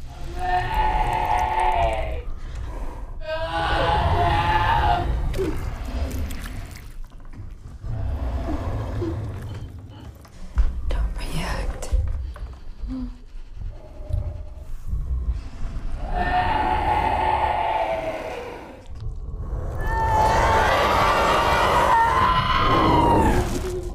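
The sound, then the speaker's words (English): A monstrous bear-like creature in a horror film, wearing a skeleton on the outside of its face, screams for help in a distorted, human-sounding voice of a dead friend, loud wailing cries in several long bursts separated by short pauses, over a deep, rumbling growl. “And then not only that, but it is screaming at you and asking for help. In your friend's voice.”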